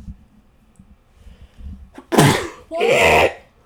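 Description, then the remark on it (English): A loud sneeze in two bursts: a sharp intake-like blast followed by a second forceful explosive sneeze, after a quiet stretch of faint background noise. “I got to sneeze.”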